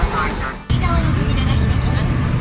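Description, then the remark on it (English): Steady low rumble of a moving, packed subway car in Kyoto, Japan, during Friday morning rush, full of businessmen in suits and kids in school uniforms, with a dense murmur of many voices and a faint high metallic whine, loud throughout after a brief dip. “I'm in Kyoto, Japan, covering the World Parkinson Congress, all queued up on a Friday morning in the middle of morning rush with businessmen in suits, kids in their school uniforms, and we're packed full like sardines into the subway car.”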